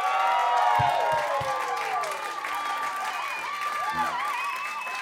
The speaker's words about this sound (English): So will you please give a big round of applause for